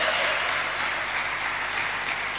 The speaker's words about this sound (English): Those who are not clapping, you are weak. Those who are clapping, you are stronger. Hey!